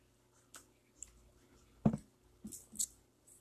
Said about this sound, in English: These six men, and I'm going to take a sip of water real quick before I get into this.